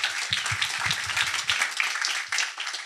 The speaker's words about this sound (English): I especially want to dote on Chase, who is today's sponsor of the demo day. So give Chase a round of applause, please.